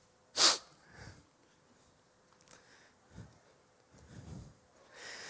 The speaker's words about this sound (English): I had a little sniffle.